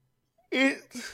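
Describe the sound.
A short vocal yawn, a breathy voiced groan that slides downward in pitch and trails off into an airy exhale.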